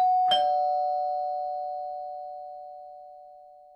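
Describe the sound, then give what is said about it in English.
A doorbell rings once, a single bright chime struck sharply and then ringing out in a long, steady fading tone, clear with no voices around it. “If he doesn't ring the bell, you can't go outside.”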